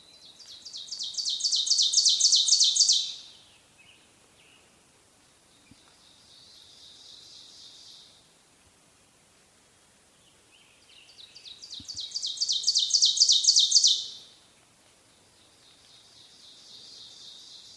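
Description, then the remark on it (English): Two bursts of loud, ringing Ovenbird song, each a rapid series of repeated two-part 'teacher' notes that build steadily in tempo and volume before stopping abruptly, followed by a fainter echo-like song. “the subsequent teacher notes sound louder and louder”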